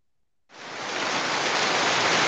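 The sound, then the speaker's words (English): A thunderstorm sound effect with no thunder: steady, dense rain hiss that starts abruptly after a brief silence and holds at an even, fairly loud level, with no voices. “Thunderstorm.”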